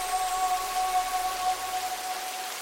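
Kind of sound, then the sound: nature, rain falling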